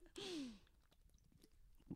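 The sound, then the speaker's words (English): A single loud slurping sip of a drink with a hissy airy rush and a brief falling tone, followed by quiet mouth clicks and faint handling noises. “I need to take a sip of my Hale here 1 second.”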